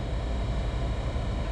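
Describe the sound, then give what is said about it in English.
A steady, broad roar of an airplane passing overhead, a continuous low rumble with a hissing wash on top and no breaks, fairly loud and with no voices. “But that means, folks, that for me, I got to kill my distractions like that plane.”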